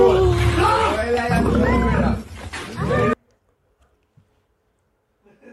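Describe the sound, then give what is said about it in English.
A lion roars loudly for about three seconds, rough and rumbling with rising and falling tones, then cuts off abruptly into near silence; the aggressive lion is behind a fence while a man touches it through the fence. “If you're listening, a man was toying with a lion. On the other side of a fence.”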